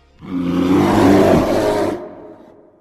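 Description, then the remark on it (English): A loud, growling vocal roar imitating a monster's paralyzing roar, sustained for nearly two seconds with a rough, rumbling low pitch before it cuts off and fades. “All right, now I'm gonna do a paralyzing roar.”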